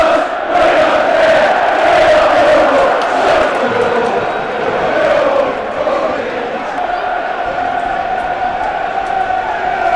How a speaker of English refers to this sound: Two each. That's got the crowd going. It was on the turn, listeners, you could hear it. That's got us fired up.